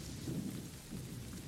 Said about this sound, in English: The storm, it was like this that night, the night Daisy died.